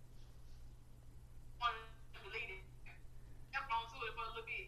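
A phone acts up with a few short bursts of warbling, chirpy electronic noise, fairly quiet against a steady low background hum.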